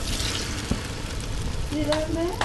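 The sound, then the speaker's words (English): A steady crackling sizzle of a praline sugar mixture boiling in a pot and changing color, continuous throughout, with a brief faint tonal squeak or hum near the end. “Oh, it should be boiling now. Oh, it's boiling. It's boiling, it has changed color.”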